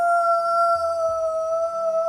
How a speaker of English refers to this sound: Juno the dog turns to you and then follows your point of view to the man on the far side of the fountain. The guy is like, What are you doing? No! As Juno the dog goes, hoo, hoo, hoo!